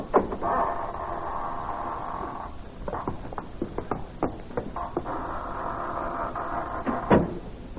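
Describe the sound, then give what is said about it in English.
A door creaks open with a long, drawn-out hinge groan, followed by a series of clicks and knocks, then another extended creak as it swings back and shuts with a thud. “Here we are, gentlemen, at death's private door. Shall we enter?”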